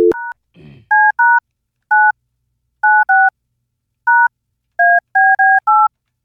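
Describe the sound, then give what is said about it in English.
A telephone number is dialed on a keypad: about eleven short, clear two-tone beeps in an uneven rhythm, each at a slightly different pitch, after a brief opening click. No one speaks. “Let's see if he picks up.”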